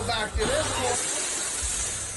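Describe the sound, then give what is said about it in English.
A car slams into a wall with a harsh, shattering crunch, followed by a rough wash of scraping noise and a second dull thud, with indistinct voices mixed underneath. “Just ripping this whole car up, smashing he's like it into a wall.”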